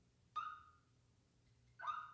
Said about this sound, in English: See, that's a car alarm.